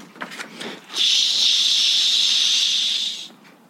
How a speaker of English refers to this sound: All right, let me spray some of this.